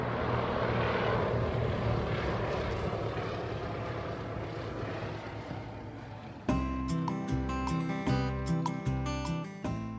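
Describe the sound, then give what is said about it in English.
A propeller plane carrying supplies drones loudly and steadily overhead for several seconds, a dense engine roar, before it cuts away abruptly to music. “Then he goes with the plane because he's the only one who knows where his stuff is going.”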